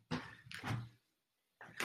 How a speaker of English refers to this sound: There's someone at the door. No, there isn't. That was me walking through the door.